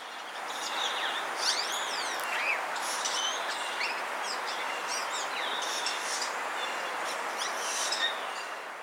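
A blue jay's soft whisper song: a quiet, rambling string of high chirps, slurred whistles and squeaky notes, continuing throughout over a steady background hiss, with no voices.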